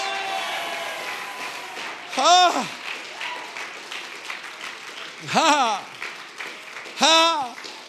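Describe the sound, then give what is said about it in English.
A crowd claps steadily throughout, a dense wash of applause, answering a call to clap and shout yes, while three loud, drawn-out shouts rise above it at intervals, each voice swelling and falling in pitch. “Oh, I wish you'd clap your hands and somebody just shout yes.”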